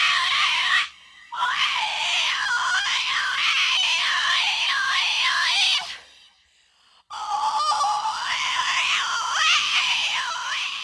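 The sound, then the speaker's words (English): Piercing, wavering vocal shrieks from an entirely vocal avant-garde record rise and fall in long sustained stretches, broken by two short silences; loud and harsh, almost honking, with no talking. “That fucking record, entirely vocal, the fucking third track on that, …, is fucking horrendously brutal”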